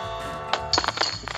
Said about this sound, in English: Nice shot. Woo! Banging chains. Banging chains.